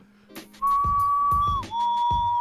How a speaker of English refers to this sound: You heard the whistle, man. You gotta do the thing.